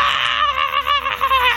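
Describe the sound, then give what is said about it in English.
A person imitates a man's scream coming from the direction of a villa: one loud, strained, wavering cry held for under two seconds, with no talking around it. “I mean, does it sound like he's screaming at me about to fire an arrow, or is he screaming like he's being attacked?”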